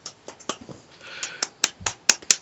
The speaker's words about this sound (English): Yay. Clapping.